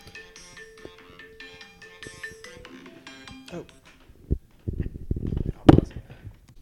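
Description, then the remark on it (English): A phone ringtone plays a bright, repeating electronic melody for a few seconds, then stops, followed by several loud thumps and handling noises. “My phone.”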